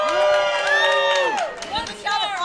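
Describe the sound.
A loud crowd of fans at Star Wars Celebration Orlando cheers and shouts, many high voices overlapping in excited whoops and yells, dipping briefly before surging again for a couple of seconds.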